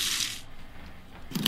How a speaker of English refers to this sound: That would be the crunchy bread being cut.